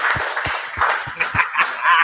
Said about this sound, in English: Thank you guys for coming out. It was awesome. Let's give a round of applause here. Real quick. Thank you.